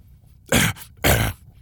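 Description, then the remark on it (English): A 'bat cough' in the manner of Batman: two harsh, raspy coughs, each a short loud burst about half a second apart, with near silence around them. “That's my bat cough.”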